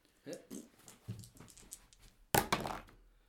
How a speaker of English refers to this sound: Let's roll to see how many likes you got. actually, roll percentile. Me, yeah, roll me the percentile dice to see how many you get.